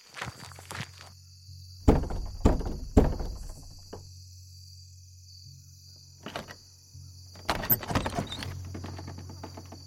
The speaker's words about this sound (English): I hit the door with the butt of the rifle 3 times.